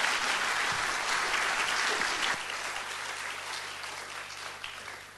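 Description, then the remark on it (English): Sustained applause from a large audience at a church service welcoming speakers as they come to share, a dense steady wash of clapping that holds strong for several seconds before starting to thin out toward the end. “Let's give them a warm welcome as they come now to share with us.”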